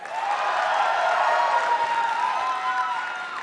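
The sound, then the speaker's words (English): A live audience erupts in sustained applause mixed with cheering and whoops, a dense wash of clapping and voices that stays loud for several seconds before easing slightly, as the audience claps to show who likes Spotted Cow. “So by a round of applause, who fucks with spotted cow?”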